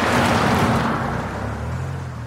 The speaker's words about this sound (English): Bats can hear whether something is coming towards them or moving away. For us, it's similar to if we could hear a car coming towards us and then driving off again.